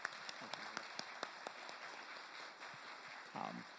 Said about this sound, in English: So, can we just applaud them as they pursue God?